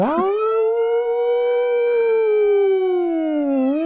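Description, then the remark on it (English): A person's voice imitates a comical 1931 police car siren: one loud, sustained wail with a slight waver, holding steady before dipping at the end. “We are back with Mac, Deke, and Freddy in the car as a comical 1931 cop siren blares in the background.”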